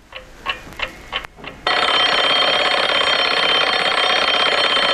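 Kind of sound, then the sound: household object, alarm clock ringing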